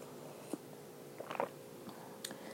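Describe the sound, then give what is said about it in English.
Quiet sipping from a drink at breakfast: a short cluster of soft slurping mouth sounds in the middle, with a few faint clicks and swallows before and after over a low background hum. “This is simply me just having my breakfast and the creator nudged on my heart,”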